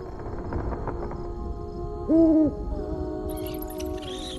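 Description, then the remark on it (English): Quiet woodland ambience broken by a single loud, low owl hoot midway, over a steady background hum, with faint high-pitched chirring creeping in near the end. “Where are we? In the woods.”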